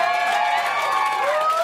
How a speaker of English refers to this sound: Yeah, you guys are a hot crowd. Clap it up for yourselves for coming out.